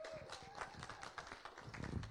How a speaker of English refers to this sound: Come on, can you give the sound guys just a round of applause?